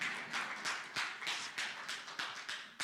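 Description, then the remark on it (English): An audience claps together in a steady, fairly quick rhythm, each beat a sharp crisp burst over a continuous wash of scattered hand claps, with no one talking. “Clap, please. Somebody clap.”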